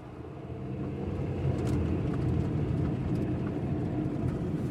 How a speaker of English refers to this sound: Mark took us across a grassy field and onto another intersecting road. He saw an on-ramp. We drove up and Mark pulled to the side.